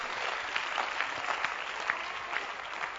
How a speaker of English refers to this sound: Clap your hands for Jesus, somebody.